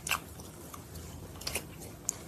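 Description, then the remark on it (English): A man chews with his mouth open: wet chewing with sticky smacks and crunchy clicks popping out irregularly over about two seconds, quiet overall, with no talking. “He was chewing with his mouth open during that entire clip.”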